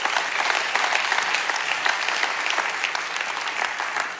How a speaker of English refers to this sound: Yeah, you can go ahead and clap.